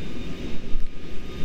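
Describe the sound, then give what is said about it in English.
A steady, droning mechanical whine of someone sawing nearby, like a power saw running, picked up on the microphone, with a broad rumbling low end and slight swells in loudness. No one speaks over it. “There's somebody sawing or something here nearby.”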